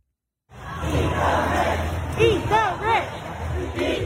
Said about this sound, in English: By the way, disproportionately white crowd here screaming, "Eat the rich."